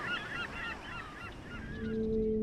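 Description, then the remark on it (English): A seabird squawks harshly several times in quick succession, loud, as it swoops down from the clouds over a reef, over a low rumble, and a steady low drone rises near the end. “One squawking seabird swoops down from the clouds sky high.”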